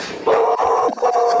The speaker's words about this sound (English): Someone's about to come to my door and my dog's going to bark.